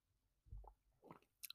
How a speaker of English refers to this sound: Let me take a little sip of my little chicory dandelion coffee thing here.